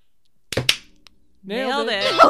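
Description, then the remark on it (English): Two sharp hand claps in quick succession, followed after a short pause by a loud, drawn-out voice calling out "Nailed it." “Clap first.”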